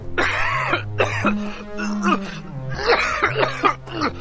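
A run of harsh, raspy coughs from a cough that is getting worse comes in uneven bursts, some clustered close together, over a steady droning musical tone that shifts pitch in slow steps.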